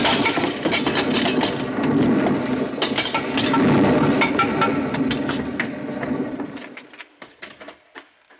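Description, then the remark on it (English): A rock pile collapsing into rubble: a loud, sustained rumbling crash full of dense clattering for several seconds, then thinning into scattered, separate knocks of falling pieces that trail off. “Here, let me help you out of that pile of rubble.”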